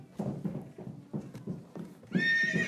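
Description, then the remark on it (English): A horse's hooves clip-clop in a steady rhythm on hard ground among old-time carriages, then the horse lets out a loud, shrill neigh near the end. “Whoa, look at those old-timey carriages. That's a pretty horse.”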